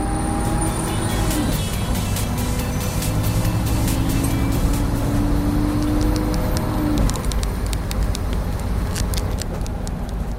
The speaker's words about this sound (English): What sounds can you hear? Sat on the bus, sat on the bus. What can you hear? Sat on the bus, sat on the bus. Let's listen with our ears.